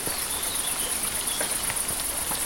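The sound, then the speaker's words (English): A steady, high-pitched chorus of crickets trilling continuously, with a few faint soft taps and rustles underneath; no one speaks. “I'm loving this cricket sound.”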